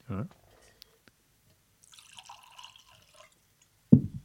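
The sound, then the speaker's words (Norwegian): A bubbly drink made of Malvasia is poured into a glass for about a second and a half, a soft fizzing trickle, framed by brief low thumps or voice fragments at the start and end. “Jeg må putte den I et sånt glass vi kan se.”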